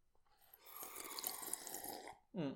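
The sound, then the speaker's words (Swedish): A loud slurp of water drawn in for over a second, airy and gurgling, followed by a brief voiced gasp right after swallowing. “Gud vad det är jobbigt att surpla varje gång.”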